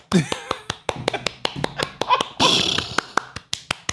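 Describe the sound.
A steady run of sharp hand claps in a loose, uneven rhythm, given as a round of applause, with a few people talking and laughing underneath the clapping.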